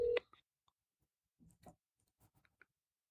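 A phone being dialed to call a number back: a short beep, then a handful of soft, irregular clicks and taps as buttons are pressed, quiet, with no talking.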